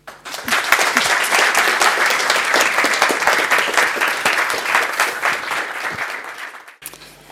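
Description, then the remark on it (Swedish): Warm audience applause for the evening's guests Joakim Lamotte and Ann Heberlein: many hands clapping in a dense, sustained wash that holds steady for several seconds, then tapers off and stops abruptly near the end. “Med det sagt så vill jag be er ge en varm applåd till Joakim Lamotte och Ann Heberlein.”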